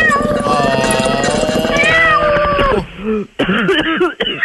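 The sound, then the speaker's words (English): A person imitates a kitten's meow, drawing out a long, wavering mew with strong harmonics, followed by a few shorter, choppy vocal sounds, loud. “Mew! Oh, the cat's voice is provided by Keanu Reeves. Mew.”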